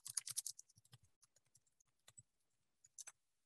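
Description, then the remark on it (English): Crisp keyboard typing: a fast flurry of sharp clicks up front, then slower scattered keystrokes thinning out, with a final quick pair near the end. No voices. “That's some weird ASMR keyboard.”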